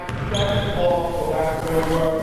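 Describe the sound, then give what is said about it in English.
Basketballs bounce during a high school girls' varsity basketball practice, a half-court practice game in a gym, their thuds blending into a steady, busy wash of court noise with high sneaker squeaks and overlapping voices throughout. “It's the orchestra of high school basketball practice in full swing.”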